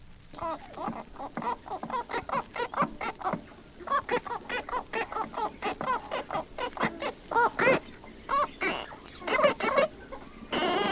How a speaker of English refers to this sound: Listen to Marmaduke, a half-moon parrot, learning his first two words, cookie and gimme kiss.